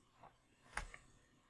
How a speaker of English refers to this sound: I have so many recordings of you clicking pens and stuff because you're a pen fidgeter. And with you that close to the mic, I have to take away your pen.